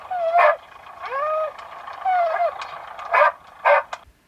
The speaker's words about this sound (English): The dog then lets out a bark and starts to whimper for a little bit.